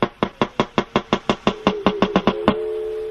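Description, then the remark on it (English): A wild walrus recorded underwater in the Canadian High Arctic makes a rapid series of sharp, loud knocks at a steady rhythm, speeding up slightly, then a sustained ringing, bell-like tone as the breeding calls fade out. “But this is a wild walrus, recorded in the Canadian High Arctic, underwater.”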